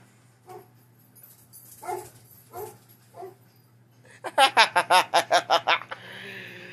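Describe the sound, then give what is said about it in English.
Dogs break into a rapid run of about nine loud, sharp barks in quick succession, following a few fainter, scattered sounds, then fade into a steady background hiss. “I set off my dogs!”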